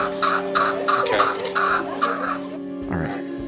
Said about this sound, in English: Rooster! I think that's him. Just wanted to make sure it's a rooster.